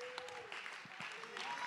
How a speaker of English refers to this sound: Stand to your feet and clap your hand to give him praise.